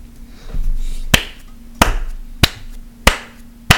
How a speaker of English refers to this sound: Who's clapping? That's me.